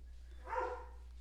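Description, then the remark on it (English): A dog named Merle gives one short, sharp, very loud bark that rises briefly above a quiet background with a steady low hum, and no one speaks. “Very loud and intimidating bark.”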